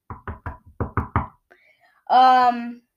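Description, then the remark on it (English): Seven crisp knocks on wood in two quick bursts, three then four, followed by a brief sustained buzzy tone after a short pause. “Hopefully not Kyrie Irving. Knock on wood.”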